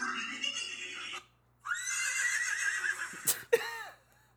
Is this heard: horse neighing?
yes